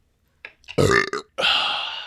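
A loud burp rumbles out in a couple of throaty bursts, then trails into a long, raspy, drawn-out belch before cutting off.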